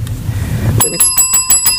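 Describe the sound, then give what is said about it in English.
A bicycle bell rings in a quick, bright burst of about five rapid dings, fairly loud, following a brief low rumble. “The daggone bell.”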